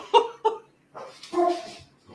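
A dog lets out two quick, sharp barks, then after a short pause a longer, drawn-out yelping bark, with a faint final sound trailing off.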